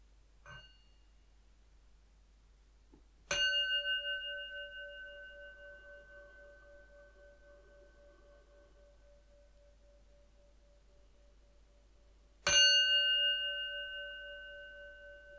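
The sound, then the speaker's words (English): A meditation bell is struck three times at the start of a guided meditation, the first faintly, then two clear strikes several seconds apart, each ringing out with a long, shimmering decay in an otherwise silent space. “It's going to start with three sounds of the bell, and I'll do the usual settling in introduction.”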